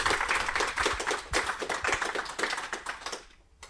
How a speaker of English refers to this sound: Please give a round of applause to our guests.